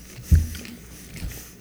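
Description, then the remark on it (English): Soft wet chewing and mouth noises of someone eating vanilla and chocolate ice cream, with one low thump near the start and quieter smacking continuing after; nobody speaks. “All I can hear gross. Is just chewing and like.”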